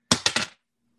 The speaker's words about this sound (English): And yeah, that's two hard successes. I swished my dice. Put the other one in dice jail.